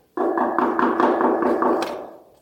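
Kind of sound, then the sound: household object, knock on a door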